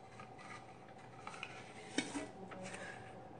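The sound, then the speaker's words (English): Faint rustling of paper being rummaged and pulled from a stein, with a few soft clinks and scrapes against its sides, the sharpest tap near the middle. No one speaks. “And we've decided we're going to pull a piece of paper out of a jar. Or technically stein.”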